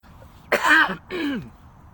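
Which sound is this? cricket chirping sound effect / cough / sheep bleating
cough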